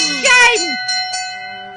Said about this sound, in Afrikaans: Ja, hoor die klokke lui.